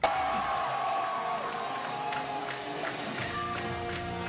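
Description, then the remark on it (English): A large concert crowd roars and cheers continuously, everyone singing along, plus occasional whoops and scattered claps over a steady, loud wash of noise. “You hear everyone singing it along.”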